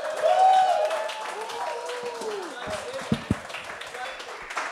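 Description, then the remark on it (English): A comedy club audience applauds comedian Monroe Martin as he is brought to the stage, with shouts and whoops rising over the clapping early on, then settling into a softer, continuous patter with a couple of sharp claps near the end. “Clap it up for me.”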